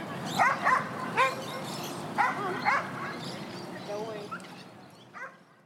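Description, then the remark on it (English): Dogs bark at a dog park in short, irregular bursts of two or three yaps at a time, over a steady outdoor murmur, with softer barking and faint voices trailing off toward the end. “Like me, right now, I'm at the dog park with my boyfriend's dog.”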